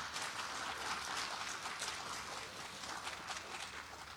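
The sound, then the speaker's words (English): Audience applause for moms at a morning Mother's Day service: a steady, dense patter of many hands clapping for about four seconds, fairly soft and even throughout, with no voices over it. “All right, can we give moms a round of applause this morning?”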